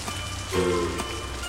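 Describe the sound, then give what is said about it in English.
Steady rain pattering on a hard surface, a dense continuous hiss with a brief low droning tone swelling in the middle, no voices present. “Everyone's trying to get out of the rain.”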